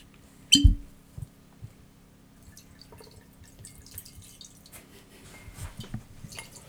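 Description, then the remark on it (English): Pike Creek Canadian Whiskey, 10-year-old and finished in rum barrels, being poured at a deer camp in Upper Michigan: a sharp glassy knock at the start, then soft, intermittent trickles and drips of liquid, fairly quiet, with no one talking. “So we're going to start the podcast off today with some Pike Creek Canadian Whiskey, 10-year-old, finished in rum barrels.”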